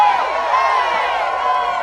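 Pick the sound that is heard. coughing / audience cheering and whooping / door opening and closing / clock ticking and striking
audience cheering and whooping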